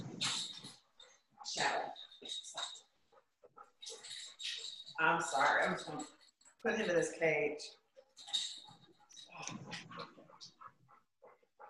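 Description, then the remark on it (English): A rambunctious young male puppy whimpers and yips in short, high-pitched bursts, mixed in with a person talking over the commotion. “I got a new puppy, guys, and he's very rambunctious.”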